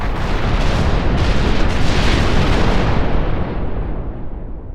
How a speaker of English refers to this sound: The fighter was carved into a half dozen pieces that slowly drifted apart before succumbing to a series of staccato explosions.